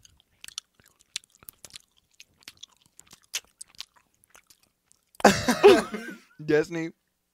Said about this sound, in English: It's fucking disgusting. It's really gross. That's how you chew normally.